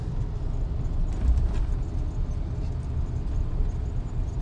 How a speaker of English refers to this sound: Put on some air conditioning. Hopefully you can hear over that air.